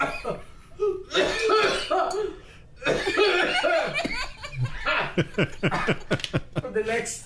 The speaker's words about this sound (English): This is great radio. Just coughing. Just a lot of coughing and laughing.